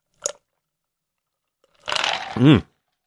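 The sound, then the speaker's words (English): Someone takes a sip of cream soda: a faint click, a pause, then a short wet slurp followed by a brief voiced gulp or 'ah'. “hang on, I'm taking a sip of this cream soda.”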